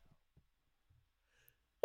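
A single sudden, sharp sneeze bursts out close and loud at the very end, after nearly two seconds of near silence with only a few faint soft sounds.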